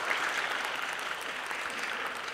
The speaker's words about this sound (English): Can you guys give a big round of applause to …, please? Thank you so much.